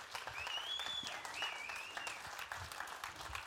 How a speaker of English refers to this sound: Come on, give him a hand clap of praise, church.